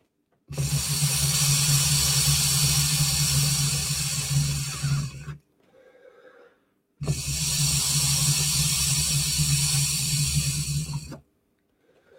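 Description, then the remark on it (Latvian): Two long, steady draws through an electronic water pipe, filling its flask with vapor, each about five seconds of loud bubbling hiss with a low gurgling rumble, separated by a brief quiet pause with soft breathing. “Nu, tagad man šī tā kolbi kārtīgi pievilkusies ir ar to tvaiki, ja?”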